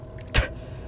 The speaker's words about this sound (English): sips from her glass of cucumber water and spits it on the floor like it's toxic.